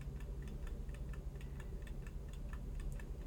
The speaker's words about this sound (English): Now it's going. Okay. I have no idea if they can hear the timer or not, but... Hold on, let's give it a couple seconds, and I'm just, because you can see it.